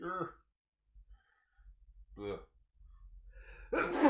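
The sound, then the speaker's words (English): A single sneeze: a couple of short voiced inhales build up before an abrupt, noisy burst at the end. “Bless you.”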